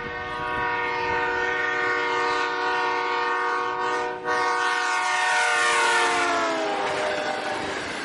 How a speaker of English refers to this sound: And the easiest way that the thing that I think about with the Doppler effect is the train horn, how you hear it starting at a high pitch, and then as it drives past you, you hear a low pitch, kind of like this video.